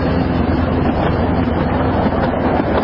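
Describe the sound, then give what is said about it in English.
A miniature railway train runs on a ride around Grosvenor Park in Chester with a steady rumble and rattle, a faint low hum running underneath, continuous throughout with no voices. “Grosvenor Park, Chester, and we're going for a ride around this lovely park on the miniature railway.”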